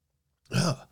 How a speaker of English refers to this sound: Man, sneeze came out of nowhere.